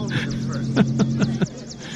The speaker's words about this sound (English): Ah, the sound of a 70s chopper. Yeah. They sound so chirpy back then. Yeah, they did.